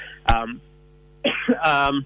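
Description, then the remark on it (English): A person two weeks out of COVID coughs and clears their throat: one sharp burst, a pause, then a longer rasping throat-clearing cough, over a faint steady electrical hum. “Excuse me, I'm 2 weeks out of COVID and I've got a very annoying cough.”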